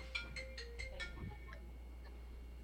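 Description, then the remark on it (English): A phone ringtone for an incoming call flagged as potential spam plays a quick series of five bright electronic chirps, followed by a couple of fainter blips, heard quietly over a low steady hum with no one speaking. “hear the phone ringing?”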